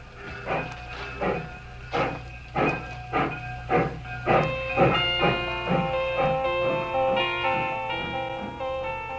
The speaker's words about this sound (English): I stood there on the embankment as the train pulled away.